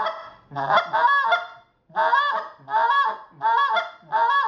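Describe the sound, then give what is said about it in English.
A goose call blown to bring in geese as they swing, in a quick, speeding rhythmic sequence of clucks and drawn-out moans, about five loud honking bursts with short gaps between them, and no talking. “If they start to swing, then you hit that, start speeding up your cluck and that moan again, and you start speeding it, and you know, you got it.”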